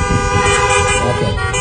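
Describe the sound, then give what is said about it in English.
A car horn blares in one long, steady honk lasting the whole moment, loud, with a low rumble of traffic or engine noise underneath. “If you think we need a little bit more kindness in this world, just give me a honk.”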